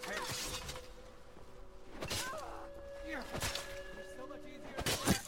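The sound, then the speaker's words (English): Several sharp, snapping arrow shots from a bow in a video game ring out at irregular intervals over a steady electronic hum, with muffled character grunts and game sounds in the background. “And some more arrows.”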